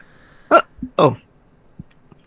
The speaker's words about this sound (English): Yeah, I had a hiccup.